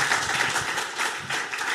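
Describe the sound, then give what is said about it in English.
A steady, dense wash of applause from a crowd welcoming a whistleblower guest, many hands clapping at once in a continuous crackle that holds at an even, fairly loud level without any voices standing out. “Please give him a round, warm round of applause.”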